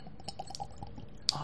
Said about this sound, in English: Listen to that glass that filling up there with beautiful nectar.